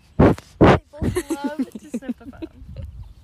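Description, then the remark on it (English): A goat named Fern sneezes twice in quick succession, two loud, sharp, breathy bursts, followed by a stretch of someone talking. “Big sneezes.”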